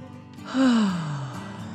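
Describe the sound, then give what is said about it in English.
A single drawn-out yawn voiced by a person, starting with a breathy intake and sliding down in pitch into a long, sighing exhale, clear. “Then the fire truck yawned.”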